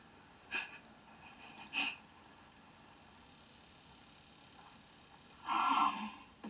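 Heavy, raspy breathing of the masked killer Leatherface in a Texas Chainsaw film trailer: two short, sharp breaths followed by a longer, wheezing exhale, heard over a low, steady rumble with no talking.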